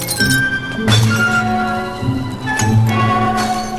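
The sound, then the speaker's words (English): Glass pop bottles clink and break in several sharp impacts as someone tries to open them, each leaving a bright ringing tone that lingers between hits. No voices are heard. “befogged brain hit on a clever way to open pop bottles.”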